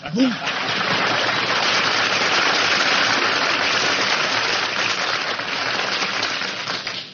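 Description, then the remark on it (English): A studio audience bursts into dense, sustained applause, a steady wash of many hands clapping at once that holds loud and even for several seconds before tapering slightly at the end. “Man, when I get applause like that, I know the audience is from Brooklyn.”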